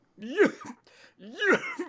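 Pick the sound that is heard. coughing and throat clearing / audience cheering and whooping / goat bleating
coughing and throat clearing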